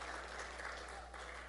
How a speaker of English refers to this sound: by the way, this place looks awesome. Give yourselves a big hand clap. I love it.